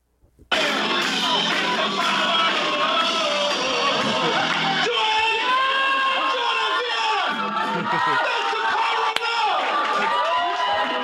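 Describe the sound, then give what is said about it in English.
A large concert crowd roars with sustained cheering, whoops and yells, a dense wall of voices that starts abruptly and stays loud throughout, while the band members laugh and clap. “Plus, the band members were laughing and in shock and clapping too hard. Here's what it sounded like.”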